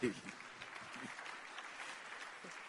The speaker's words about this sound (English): I don't like the way you are clapping at all.